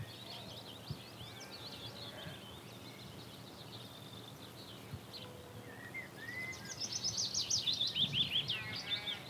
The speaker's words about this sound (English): As the name implies, it likes the willow. So that's it singing right here. You hear that lovely bubbling descending call? That's the willow warbler.